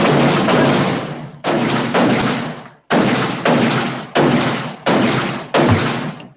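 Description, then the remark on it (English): A string of about eight loud gunshot blasts fired in quick, slightly uneven succession, each a sharp crack followed by a brief echoing tail. Forceful, with no voices. “We hate you guys. Shots fired. Boom.”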